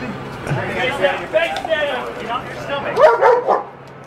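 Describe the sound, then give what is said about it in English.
A dog barks and yips excitedly in a rapid series of sharp calls, fairly loud, while police officers have it right by a man's face, with people talking over it and a steady low hum underneath. “Oh damn, they got the dog right by his face.”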